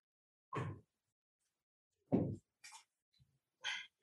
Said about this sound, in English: I did, because my dog is like scratching on the door.